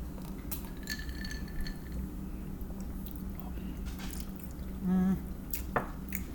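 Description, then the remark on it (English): Glasses of an orange-brown passion fruit drink clink together in a toast, a couple of sharp, bright taps standing out against a low background hum, with a brief ringing tone between them. “Let's clink it up.”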